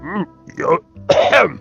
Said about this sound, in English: You have a little bit of a cough there.